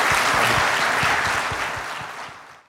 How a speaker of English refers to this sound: Thank you, Richard. A round of applause, please, for Richard.